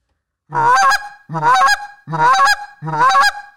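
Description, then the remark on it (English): A goose call blows a rolling double cluck: four loud, rhythmic clucking honks in quick succession, each a sharp rolling note with a low start breaking upward, with no talking. “what would you say was the note that brought you to the next level as a goose caller? Probably the rolling double cluck, really?”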